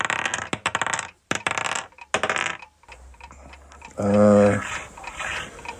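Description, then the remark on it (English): Four dice clatter and tumble across a hard table in a few quick rattling bursts, then settle into lighter scattered clicks, with a short vocal sound breaking in near the end. “You do need to roll them.”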